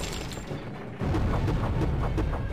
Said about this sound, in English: Oh, there we go. Most doors can be smashed open.